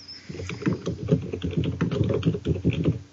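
Rapid, continuous clicking of keys on a computer keyboard, steady, with irregular bursts of keystrokes throughout and no talking.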